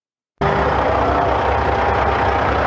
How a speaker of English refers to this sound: Whatever you think about the issue, there's something that feels deeply Canadian about the sound of diesels idling before sunrise on a winter morning.